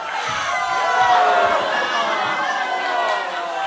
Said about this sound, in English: You know what, guys? There's plenty to go around, so send up whoever you're shouting at, please.